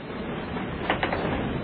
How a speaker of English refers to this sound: Let's let the dice of destiny decide. All right. Okay. All right, hold on, sir. So pick odds or evens. Odds. All right, here we go.